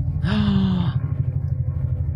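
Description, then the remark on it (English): A helicopter passes overhead, its steady low rotor throb pulsing throughout. Near the start, a short breathy burst with a brief rising-and-falling tone briefly sits on top of the rumble. “Hold for helicopter.”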